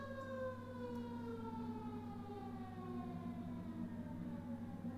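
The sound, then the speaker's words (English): A fire truck siren wails steadily, its pitch gradually sliding lower as it passes, over a low background rumble with no one talking. “I'm not sure the microphone could pick that up, but there's a fire truck going by.”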